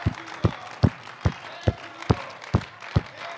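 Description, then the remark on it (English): An audience claps together in a steady, even rhythm, about eight sharp beats in a row, each one strong and punchy with nothing else prominent around them. “Why don't we put our hands together and give them the biggest clap?”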